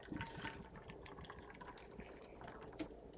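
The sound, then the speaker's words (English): A half-and-half mix of Pellegrino and Fresca is poured steadily over pink ice cubes in a glass, a continuous splashing and trickling with faint clinks and crackles of cubes shifting. “And unfortunately, I didn't choose a clear beverage for these ice cubes, where so you can't really enjoy the aesthetic glory of”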